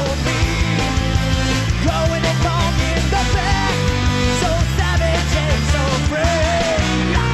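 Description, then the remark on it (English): A fast, wailing lead electric guitar solo with bent, wavering notes rides over a loud, dense 80s-style rock band with steady drums and bass throughout. “Yeah, shred. Love that solo.”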